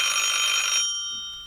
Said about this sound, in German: Im Flur klingelte das Telefon.